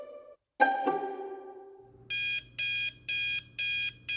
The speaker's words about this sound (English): My alarm goes off at 4 a.m.